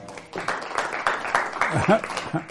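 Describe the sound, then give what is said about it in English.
A church audience applauding steadily as Jesse Peterson is introduced on a Sunday, a dense patter of many hands clapping at moderate loudness for a couple of seconds, with a brief voice rising through the clapping near the end. “You love the applause?”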